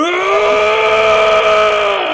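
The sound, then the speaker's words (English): A voice imitates a woman screaming as loud as she could while grabbing a man, one loud, sustained "ah!" holding a steady, strained, fairly high pitch for about two seconds before cutting off. “She was grabbing him and going, ah! Like as loud as she could”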